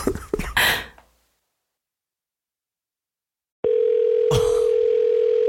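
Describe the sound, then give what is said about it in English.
A brief burst of clattering and handling noise fades to silence, then a steady electronic telephone ringing tone begins and holds at even loudness, like the ringback heard on an outgoing call. “I can't turn off with this ringing.”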